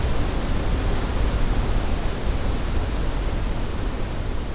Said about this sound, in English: It winds back and forth for hundreds of miles until tumbling several hundred feet straight down and crashing into a pristine pool surrounded on all sides by towering ironwood.